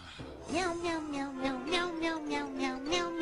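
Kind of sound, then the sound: animal, cat meowing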